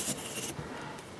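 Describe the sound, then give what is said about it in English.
A pencil scratches across paper, a short, steady, gritty stroke with bright hissing texture that eases off midway, no voices present. “So it's the way it's sort of like, as you're going across the paper, it sort of sticks to the paper.”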